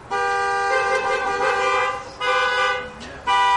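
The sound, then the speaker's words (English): Car horns honk in three long, loud blasts, the first lasting about two seconds, with brief gaps between them. The horns are clear, and no one speaks. “No honking.”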